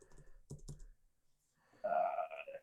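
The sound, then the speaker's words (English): A few quick clicks of typing on a computer keyboard tap out in a short burst as someone looks up a place called Corona Downs, followed after a pause by a louder, rough throaty sound. “I'm looking now. I'm typing away.”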